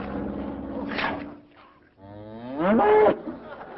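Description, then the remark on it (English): A herd of cows on an airfield runway moo twice, loud: a long, low drawn-out bellow, a brief pause, then a second, stronger moo that swells and bends in pitch before fading. “See the way he's keeping his weight for that herd of cows on the runway.”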